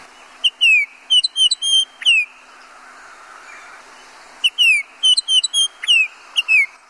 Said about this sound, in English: … talks about birds of the hill country, Baltimore Oriole.